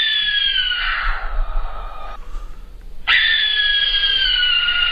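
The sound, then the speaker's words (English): Two long, harsh, hissing shrieks of a barn owl, loud, the first lasting about two seconds and the second beginning after a short pause, with no voices. “And then the really scary one, the barn owl.”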